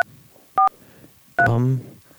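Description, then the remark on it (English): Two telephone keypad dialing tones as someone calls by pressing 3: a short, high electronic beep, then after a pause a longer, louder one with a lower murmur beneath it, against a faint hissy background. “You had to look up his number. You just pushed 3.”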